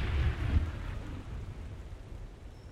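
storm with rain

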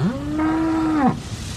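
dairy cows mooing

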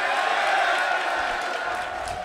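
audience cheering and clapping

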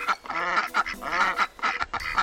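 mallard ducks quacking

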